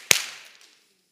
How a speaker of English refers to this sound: As we do in our class, clap once if you can hear me. Clap twice if you can see me.